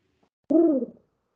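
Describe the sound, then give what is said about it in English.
A person imitates a wood pigeon with a single hollow, rounded 'woo' lasting about half a second, then quiet. “To it to woo. Woo-hoo! A wood pigeon?”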